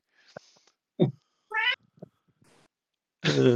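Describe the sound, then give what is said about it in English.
A cat meows twice, a short rising mew followed after a pause by a longer, louder drawn-out meow, with a few soft thumps and clicks in between and no talking. “Very apt. The cat, what do you think?”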